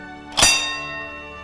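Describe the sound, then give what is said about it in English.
A single bright metallic strike of a horse race starter's bell rings out, its sharp clang quickly fading into a long, shimmering sustain of high overtones. No voices accompany it. “So the bell that you hear in that episode is the actual starter's bell.”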